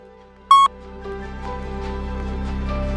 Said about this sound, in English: Message over. Speak to me after the beep, and here's the beep.